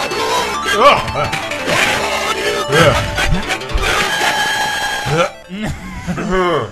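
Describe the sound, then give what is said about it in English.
Harsh, gritty Sega Genesis game audio: crunchy distorted tones, clanging percussive hits and a garbled, voice-like sample, loud and dense throughout with a brief drop near the end. “It's like everything got put through a paper shredder or something.”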